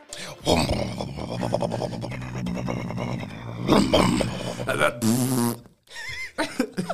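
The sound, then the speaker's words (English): Several voices make buzzing, rumbling engine noises with their mouths, rising and surging in pitch like revving cars, loud for about five seconds before trailing off into brief murmurs. “When you guys definitely did the engine, it made me think of the start of Cars.”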